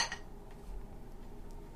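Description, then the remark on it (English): Beer glasses holding Three Floyds Space Station Middle Finger, a 6% ABV American Pale Ale, clink together once in a toast, a bright ringing tap right at the start that fades quickly into a quiet, low room hum. “Cheers. Cheers. I'm excited for it.”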